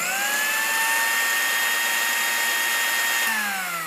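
A blender motor whirs at a steady, high-pitched whine for several seconds, loud, then starts to wind down near the end. No voices.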